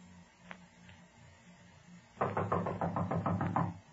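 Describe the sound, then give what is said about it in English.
A rapid, loud flurry of knocking on the front door of a building, roughly ten sharp raps in quick succession, preceded by a couple of faint isolated taps over a low background hum. “You'll go to the door and knock on it.”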